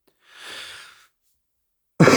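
A long, breathy exhale is followed after a short pause by a sudden, loud cough, cut off at the end with no talking.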